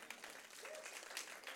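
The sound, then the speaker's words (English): An audience applauds after being told the church is the army of God, a dense, steady wash of many hands clapping at once, fairly loud and continuous for the whole moment with no voices standing out. “Come on, you got to clap for that.”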